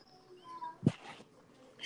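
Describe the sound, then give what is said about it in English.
A dog whimpers faintly in thin, high-pitched whines that drift in and out, with a brief dull thump partway through, all quiet. “Is that fucking dog?”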